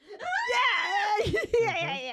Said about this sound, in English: And then insert a scream.